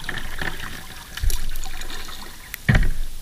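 Kayak paddle strokes splash and swish through river water at a steady pace, with two stronger dips around the middle and end, over a soft continuous trickle of moving river water.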